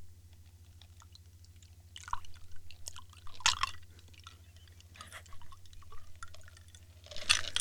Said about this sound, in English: Oh, that sounds great. The pouring of that? Pouring of that.